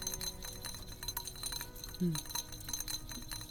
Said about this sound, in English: the mixture might look a little separate-y and piecey at first, but I promise, stick with it. Just keep stirring. Try not to whisk too vigorously, or you may incorporate some air bubbles into your ganache, which no one wants.